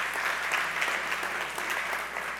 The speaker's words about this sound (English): And we saw in that two-week period, we had 70 people get filled with the Holy Spirit for the first time. 70 people in those four services. Come on, give God a good praise clap for that.